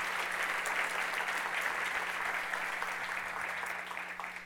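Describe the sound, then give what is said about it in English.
Steady, sustained clapping from a sizable audience giving a warm applause to a woman who has spoken, a dense patter of many hands that holds at an even level and only slightly eases toward the end. “Would you please give our sister a warm applause?”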